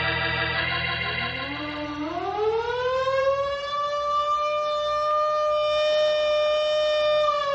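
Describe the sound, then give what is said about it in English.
A fire siren winds up, its wailing tone climbing steadily in pitch for a few seconds before settling into a loud, sustained, unbroken howl with no voices over it. “Where's the fire at?”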